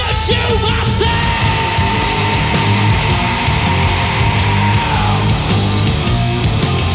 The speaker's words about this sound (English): Yeah, we get the screams at the end, though. Those are the big two.